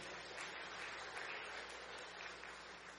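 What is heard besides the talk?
audience applause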